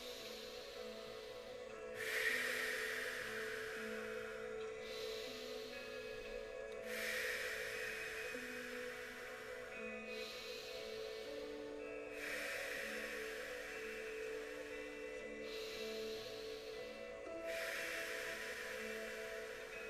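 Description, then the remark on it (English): Steady, rhythmic circular breathing, each full inhale through the nose and exhale through the mouth following the last without pause, roughly every two to three seconds, over a soft sustained musical drone. “And we're going to enter into round two, circular breathing. Breathing all the way in through your nose and out through the mouth.”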